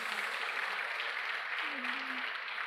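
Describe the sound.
A church audience applauds the Lord: many hands clapping in a dense, steady wash of sound that holds at an even, moderate loudness for a few seconds, with a faint hum of voice briefly underneath.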